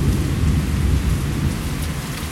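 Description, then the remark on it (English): Heavy rain pours down steadily in a thunderstorm with lightning strikes and wind blowing, a dense hiss over a deep, continuous rumble of thunder that rolls low and loud throughout, with no voices. “Lightning strikes going on every which way. Rain pouring, wind blowing.”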